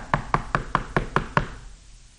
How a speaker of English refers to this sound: At the same time, then, there was a knock that came on the door.